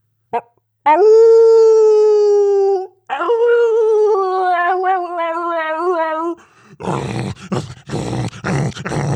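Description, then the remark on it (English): A long, loud wolf howl introducing today's "Howlin' with Wolf" segment holds a steady pitch, then rises into a second wavering howl that trembles up and down before breaking into a rough, noisy burst of sound at the end. “Here is today's Howlin' with Wolf.”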